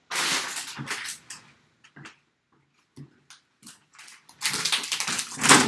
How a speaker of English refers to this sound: It was like Larry David popping those bubbles. Just were you stepping on bubbles? So bubble wrap?